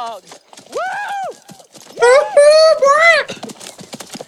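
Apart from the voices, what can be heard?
horses clip-clopping and whinnying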